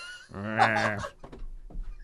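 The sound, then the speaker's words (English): A person imitates a dog's bark with a single loud, drawn-out vocal "ruff," followed by a few soft clicks and breathy sounds. “I am a dog myself. Ruff.”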